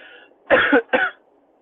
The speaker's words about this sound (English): Sorry, I just had a cough at that.